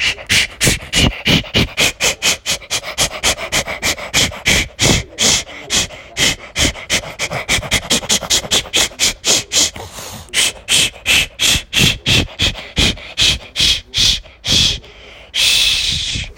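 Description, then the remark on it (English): A person imitates a steam train with rapid, steady, breathy chuffs, loud, slowing near the end into a few spaced puffs and a longer hiss. No one talks. “Now you'll hear steam train noises.”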